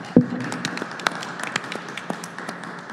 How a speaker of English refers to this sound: Let's clap for our awesome panelists tonight.